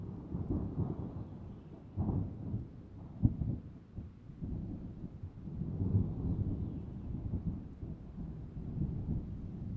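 A thunderstorm in Florida's rainy season: deep, rolling thunder rumbles almost continuously, swelling in waves over a steady wash of rain, fairly loud, with no voices.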